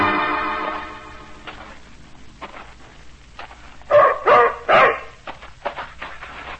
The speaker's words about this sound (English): Keep that animal away from me. German shepherd dog, that's what he is. Come out of the army. Like I said, real bad. Vicious.